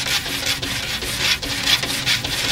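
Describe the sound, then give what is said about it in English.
A dog scratches at a wooden door in quick repeated rasping strokes, a steady scraping of claws on wood with no voices. “Someone see his scratching at the door.”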